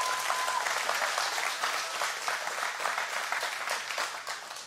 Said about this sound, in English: Would you give those a round of applause who raised their hand tonight?